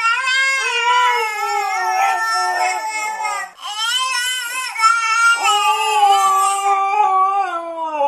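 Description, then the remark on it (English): A baby's wailing cries and a husky's long, wavering howls imitate and answer each other in sustained, pitch-sliding tones, loud, with a brief pause midway. “And now for your listening pleasure, a baby and a husky imitating each other.”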